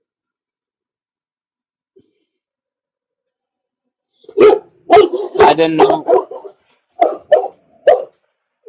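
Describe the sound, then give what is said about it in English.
Dogs bark loudly after a few quiet seconds: a dense cluster of sharp barks, then a few spaced ones, with a brief spoken phrase mixed in. “The fun times with the dogs. Yeah, they get you every time.”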